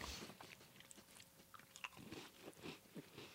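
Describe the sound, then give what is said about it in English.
Someone bites into a crunchy fudge-striped cookie and chews it, a steady run of crisp, crackling crunches with brief pauses between bites and no talking. “The texture is great. The flavor is almost non-existent. Mm-hmm. But it's got really great crunch.”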